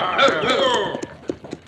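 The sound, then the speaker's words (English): The hooves of three riders' horses, wet from fording a river, clip-clop in a short, uneven series of sharp knocks that follow a moment of voiced sound, the hoofbeats standing out clearly as the riders approach. “Ah, here are three riders, Pancho. Their horses are wet from fording the river.”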